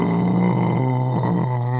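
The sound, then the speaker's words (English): A voice imitates the growl of the Tarrasque, a monster buried underneath rocks: a low, sustained, rumbling snarl with a rough, harmonic buzz, steady and loud for about two seconds, with slight wavering pitch shifts. “He growls.”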